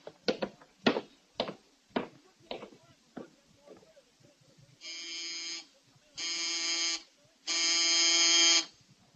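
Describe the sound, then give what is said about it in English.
Three harsh, steady electric buzzes from the doorbell of Mr. Maynard, treasurer of the Mercantile Loan Company, rung late at night. Each buzz lasts about a second with short gaps, the last one longest and loudest, following a series of sharp knocks or footsteps. “It was pretty late, and it took quite a while for Mr. Maynard, treasurer of the Mercantile Loan Company, to answer the doorbell.”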